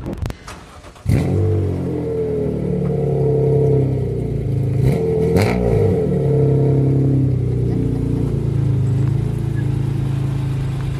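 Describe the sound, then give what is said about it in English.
A car engine revs loudly as the car is driven up into a trailer, its pitch rising and falling in steady harmonic sweeps as it pulls forward, with a couple of sharp clanks near the start. “Christina's loading everything up right now, getting ready to pull her car up into the trailer.”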